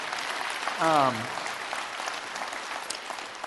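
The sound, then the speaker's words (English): A crowd applauds and cheers to celebrate 99 high school students baptized in the past 2 years, a steady, dense patter of clapping, and a single voice lets out a short, falling whoop of cheering partway through. There is no speech, and the clapping carries on throughout. “And I would love just an opportunity just to celebrate that and to cheer for them.”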